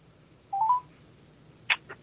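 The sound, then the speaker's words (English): A short electronic tone sounds, then after a pause two quick brighter beeps follow, like keys pressed on a telephone keypad, dialing a phone number in a Bray Wyatt video. Fairly faint, with no voices. “So in the midst of the crazy Bray Wyatt video is a phone number.”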